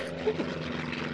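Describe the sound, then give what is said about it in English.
A biplane's propeller engine drones steadily, a rough, rattling hum that holds at an even level with no pauses. “This plane's getting a little rickety here. Well, it is a biplane.”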